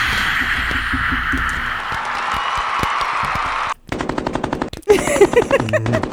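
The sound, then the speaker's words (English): A canned burst of applause from a hand-clapping sound effect, played to congratulate someone on 100 episodes: a dense wash of many hands clapping, then a brief gap and quicker, sharper rapid-fire claps, fairly loud with no voices. “There's a hand clapping thingy.”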